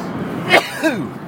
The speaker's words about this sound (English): And pardon me, about to sneeze.